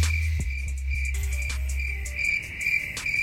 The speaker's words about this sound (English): Damn, cricket. Wow. Rubbing her two bunions together. That's how she gets those noises. Uh-huh. That is rubbing them bunions together.